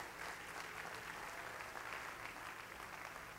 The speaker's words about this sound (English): Can you clap your hands to the Lord and give God praise?